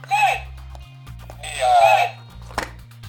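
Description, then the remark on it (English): Custom green and blue game-show buzzers are pressed, each press a short, bright, loud electronic burst, over a steady low hum, with a faint click near the end. “Press the green and blue buzzer to see who they belong to.”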